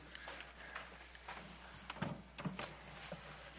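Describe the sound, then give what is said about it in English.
A door that had been left open is pushed shut by the speaker, giving a couple of soft knocks and a click over a low, steady background hum. No one speaks. “I'm going to close the door that I forgot to do.”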